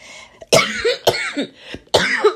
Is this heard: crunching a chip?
no